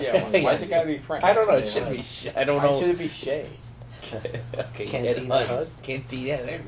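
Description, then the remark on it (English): Crickets chirp outside a screen porch (Florida room) on a still, balmy evening of about 70 degrees with no breeze, a steady, high, continuous trill that runs beneath people talking the whole time. “His pet crickets.”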